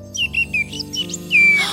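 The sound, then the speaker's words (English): A bird named Harry chirps and whistles in a quick run of short, bright, falling notes, ending on a longer drawn-out whistle, with soft steady music humming underneath. “You got lost and separated from your bird friends, and now you don't know where they are.”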